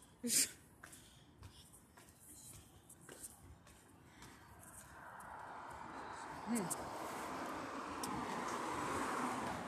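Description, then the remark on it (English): A steady rush of road noise swells in the second half as cars, including two white cars, draw near and drive past, with scattered clicks and faint voice sounds earlier. “Oh, two white cars, real sexy.”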